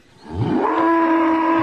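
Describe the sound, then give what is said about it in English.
A Talk Radio caller from Weybridge imitates a cow's moo: a single drawn-out call that swells up from a low growl into a steady, fairly loud tone held for over a second. “I am an old cow.”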